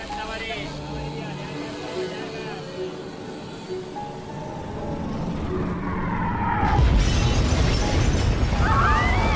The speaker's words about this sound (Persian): مردم تهران سر به کوه و بیابون گذاشتن. شنیدم جمعیت شهر نصف شده، هر شب بمبارونه بدون هیچ پناه و دفاعی. در تاریکی منتظرن تا کی زیر هوا رو انفجار بمب دفن بشن.